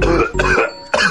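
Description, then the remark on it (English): Three harsh coughs in quick succession, each a short raspy burst with a brief pause between, the last slightly more spaced out; no talking. “Better to cough.”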